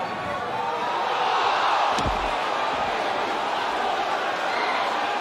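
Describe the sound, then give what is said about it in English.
Wrestler Mike Awesome lands on JT Smith, sandwiching him on a metal guardrail: a single heavy body slam with a sharp, booming thud partway through, amid steady loud crowd noise from a large arena audience at an ECW event. “Mike Awesome just landed on JT Smith, sandwiching him on the guardrail.”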